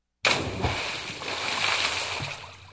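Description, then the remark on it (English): A sudden, heavy splash as someone cannonballs into water, followed by a couple of seconds of loud churning and sloshing, with no voices. “Now, who it is that thinks you're going to get protection by cannonballing into the water wearing a helmet?”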